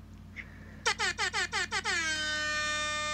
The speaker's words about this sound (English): So that air horn means it is the end of the first quarter.